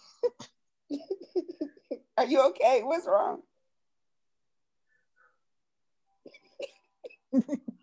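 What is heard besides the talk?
coughing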